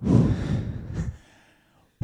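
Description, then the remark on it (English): Heavy, rough breathing after running: a long, noisy exhale with a second puff, then a brief silence before another sharp breath begins. “Sorry, I'm breathing really hard. I was just kind of running and doing a lot.”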